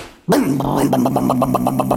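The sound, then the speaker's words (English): A voice imitates a motorcycle engine being started by a man stepping onto it: after a moment of silence, a sudden loud rev bursts out, then settles into a steady, rapid, rhythmic putter. “Leroy stepped on that motorcycle and started her up.”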